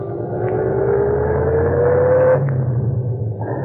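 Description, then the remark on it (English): A taxi's engine hums steadily as it drives north along the post road, its tone rising gradually as it picks up speed, with a constant low road rumble underneath and no voices. “We went north on the post road.”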